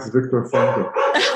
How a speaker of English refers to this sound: Oh. Well, my dog has decided to start going nuts. Somebody is knocking at the door. I'm so sorry.